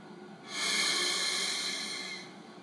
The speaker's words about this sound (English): Oh, before we read, let's breathe. Let our breathing remind us of the closeness of God.